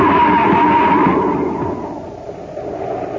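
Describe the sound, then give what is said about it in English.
A car on a foggy highway skids over the edge of a cliff: its tires screech in a loud skid over a heavy rumbling roar, which fades and settles into a lower, dull rush by the end. No voices are heard. “Happy, look out. We're heading for the edge. Huh? We're going over the cliff!”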